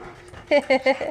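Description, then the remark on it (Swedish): A female guide dog gives three quick, loud, high-pitched barks in a row, trailing off into a softer whining yelp, with faint background murmur underneath. “Var det du som skällde?”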